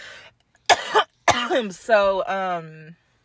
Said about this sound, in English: So, excuse me. I'm sorry, y'all. I'm just like coughing up a lung. I'm gonna drink some damn water.